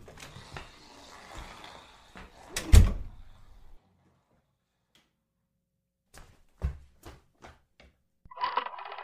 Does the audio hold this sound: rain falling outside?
no